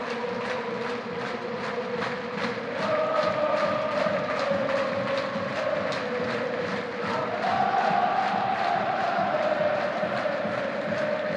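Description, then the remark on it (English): A large Bradford City football stadium crowd roars and chants together in a loud, steady wall of voices. Rhythmic clapping runs through it, and the sung pitch rises partway through. “There's not a single person in this Bradford City crowd now that doesn't deserve this.”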